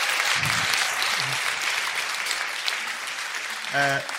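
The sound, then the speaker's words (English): A crowd gives a round of applause for the film Boy, clapping steadily for several seconds in a dense wash at even loudness, with brief vocal bursts and a short cheer rising near the end. “Round of applause for Boy.”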